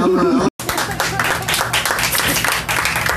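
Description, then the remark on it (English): Loud, steady applause from an audience at a stand-up comedy show after a comic's set, dense rapid clapping sustained for a few seconds after a brief burst of voice and a split-second gap. “Clap it up for them.”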